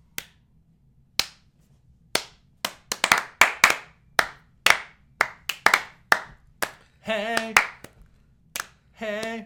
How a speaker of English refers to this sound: I just wanted three claps.